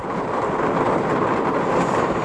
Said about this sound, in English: I don't know fucking how long this rain's going to be. If it is an hour, which I hope it's not, I don't know. I like rain when I'm doing nothing, not when I'm trying to fucking work out